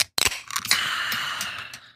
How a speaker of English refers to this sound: It just sounds refreshing. You have to say, it's like 100 degrees today. So we just cracked a limoncello sparkling water from LaCroix.